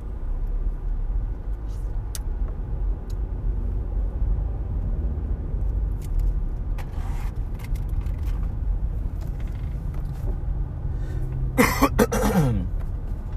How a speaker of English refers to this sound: You may hear me cough periodically on this podcast. Ever since I was a little kid, I've had chronic bronchitis.